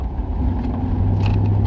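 A steady, low engine drone fills a car cabin during a drive home of about five miles at around 6 a.m., with constant rumbling road noise and no voices, holding an even level for the whole short stretch.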